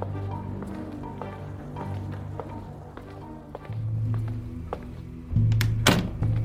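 People downstairs bang on doors, a string of dull, irregular thuds with a few sharper knocks, heard over a steady low hum. No one speaks.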